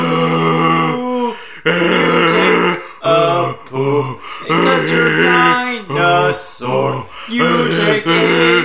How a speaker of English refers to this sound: Here you go, every ladies and gentlemen. Farting.